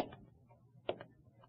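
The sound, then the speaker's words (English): Footsteps: a few soft, uneven taps against a faint low hum, with one sharper step near the middle. No voices. “Then I heard the steps.”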